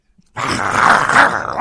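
A dog lets out a loud, snarling growl that starts abruptly after a brief silence and rumbles on continuously for over a second, with no talking.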